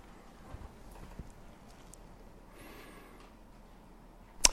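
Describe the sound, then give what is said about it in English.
Horse hooves clip-clop at an unhurried, uneven pace over a low background hum, with a faint whistling rush in the middle and a sharp loud knock right at the end. “If we put bits into the mouths of horses so that they obey us, we guide their whole bodies as well.”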